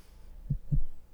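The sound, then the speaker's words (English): Two soft, low thumps of the fetal heartbeat of a baby boy on a sonogram ultrasound monitor, close together in a quick rhythm against a faint, muffled background hum, with no voices. “And you see there, that's its heart beating inside of you.”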